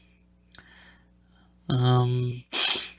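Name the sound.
person yawning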